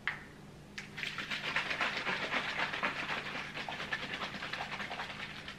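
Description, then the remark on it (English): A tightly closed container of water is shaken hard and steadily, giving a rapid, rhythmic sloshing and splashing that starts after a brief pause and continues strongly to the end, with no voices. “I shake it really good because I want the water to get nice and through there.”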